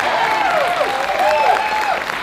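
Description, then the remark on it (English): An audience claps steadily together for God at a morning church service, a dense, even wash of hand claps, with voices calling and whooping over it for the whole stretch. “Y'all give God a hand clap this morning.”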